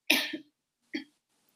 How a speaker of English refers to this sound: What? Oh, she's coughing.